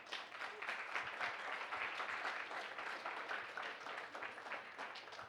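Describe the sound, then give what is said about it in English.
An audience applauds steadily for several seconds, a dense, even wash of many hands clapping at a constant moderate level, with no voices heard over it. “And I just want to applaud you”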